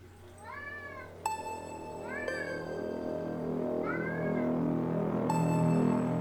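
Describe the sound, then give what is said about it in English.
A cat named Mowgli meows three times in the background in rising-and-falling calls spaced a second or two apart, over a steady low hum with a few sharp ringing tones; no one speaks. “All right, well, as you can all hear, Mowgli is meowing at me in the background like usual.”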